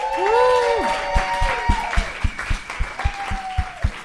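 Audience applause: a steady run of sharp claps at a brisk, even pace, with high whooping cheers rising over them at the start, then lingering as the clapping continues.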